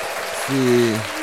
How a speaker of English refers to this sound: Can we get an applause for a first on this?